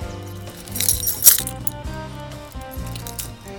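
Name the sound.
keys jangling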